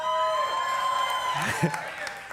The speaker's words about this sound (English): but if you keep clapping, it just might be 45 minutes.